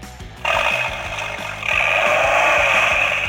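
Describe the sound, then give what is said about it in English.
A Viper sports car engine sound, played from the book What Cars Say, roars to life after a brief low idle, then revs higher partway through into a loud, steady, raspy growl with a deep rumble underneath. “That sounds like a Viper. It is a Viper.”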